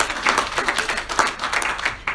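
A church crowd breaks into steady applause as a woman is invited up to share scripture, many hands clapping in a dense, crackling patter that holds at an even, fairly loud level throughout.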